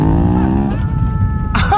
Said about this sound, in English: I think we're still capable of leading the wicked astray, especially since this car can cross the bogs without too much trouble. I'm going to bet that motorbike can't. Take a look.